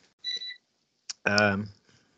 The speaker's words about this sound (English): Yes, I've got things beeping at me in the kitchen, so I've just kicked it. Shut it up.